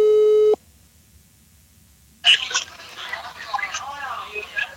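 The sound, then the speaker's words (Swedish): A steady electronic telephone ringing tone sounds briefly at the start and cuts off, followed by a short silence before a voice answers over the line; two people in Grebbestad on the Swedish west coast are calling their mother to ask her something. “Ska vi ringa upp och fråga? Ja, vi ringer, eller hur?”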